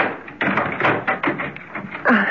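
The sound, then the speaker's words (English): A door is unlocked and pulled open: a run of irregular clicks, taps and rattles from the latch and handle, ending in a slightly louder clunk. “Just a sec. The door's locked.”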